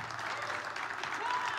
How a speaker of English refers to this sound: Yeah, we can give him a round of applause.